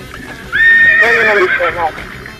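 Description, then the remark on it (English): A horse lets out a loud whinny lasting about a second and a half, its pitch wavering and then falling away, heard on its own with no talking. “I hope that was our horse and not your horse”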